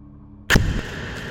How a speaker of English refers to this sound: A sound like an explosion makes me jump out of my seat.